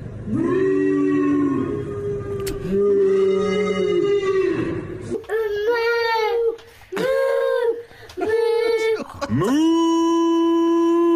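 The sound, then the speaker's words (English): Several people in Belper stand on their doorsteps imitating cows in a nightly two-minute cattle chorus: long, drawn-out moos, some low and droning, others higher and wavering, overlapping at first and then coming in separate bursts with short pauses between. “They all stand on their doorsteps and moo like cows.”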